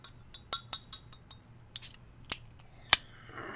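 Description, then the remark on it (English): A fizzing drink: scattered small crackling pops and faint clinks, a sharp click near the end, then a soft, steady hiss of bubbles. Quiet overall, with no one talking. “Oh no, it's fizzing.”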